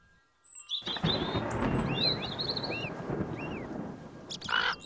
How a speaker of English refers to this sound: Oh, here comes a thunder.